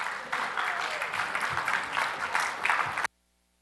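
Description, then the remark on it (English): An audience at a church service applauds steadily for about three seconds as children and adults from Vacation Bible School come up to the stage to sing. Dense overlapping claps with a few cheers mixed in, then the sound cuts off abruptly into silence. “Some of the children and adults from Vacation Bible School this past week are going to sing, so let's give them a round of applause as they come up to the stage.”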